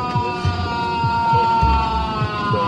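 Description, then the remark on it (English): Alexei Navalny, aboard a plane, lets out long, low screams of pain, rising and falling in repeated groaning cries over a steady mechanical engine drone, loud throughout. “You know, there's a whole group of people have gathered around him, trying to keep him awake, keep him conscious, and people took videos where you can just hear Navalny letting out these just animal screams, these long, low screams of pain.”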